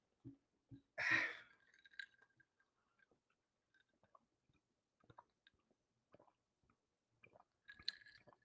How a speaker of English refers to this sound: Anyways, another sip of this Jameson and ginger for the birthday.